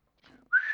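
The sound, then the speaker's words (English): A person whistles a short, clear note up close: a faint soft tone first, then a loud steady pitch held to the end, with no talking. “That's me whistling.”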